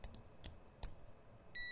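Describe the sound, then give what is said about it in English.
A few quiet, sharp clicks of multimeter probes tapping together, irregularly spaced, followed near the end by a steady high-pitched electronic beep from the multimeter's buzzer that starts and holds. “So there I'm clicking the probes.”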